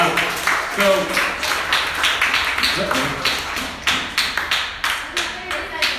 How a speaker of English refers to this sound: So thank you for helping us see that example. Yeah, you can clap. Come on.